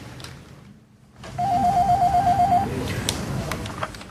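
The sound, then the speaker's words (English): A telephone in an office rings once as a man picks up the phone to call his secretary: a warbling, rapidly pulsing electronic tone lasting about a second, over a steady low background rumble with some faint clatter afterward. “He's picking up the phone, calling his secretary.”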